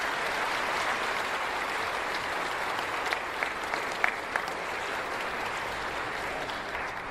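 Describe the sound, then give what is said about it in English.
An audience at a worship assembly applauds steadily for several seconds after a prayer, a dense wash of clapping with a few sharper individual claps standing out midway, holding at an even level before tapering slightly at the end. “Let's give him one last hand of applause.”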